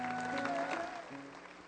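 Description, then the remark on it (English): A church audience claps steadily in praise of Jesus Christ, a dense, continuous wash of hand claps, with sustained musical tones held underneath, the clapping easing slightly toward the end. “One more time, give a great hand clap to Jesus Christ, the King of Kings and the Lord of Lords.”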